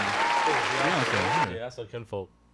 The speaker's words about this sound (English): Where's the applause sound? The sound.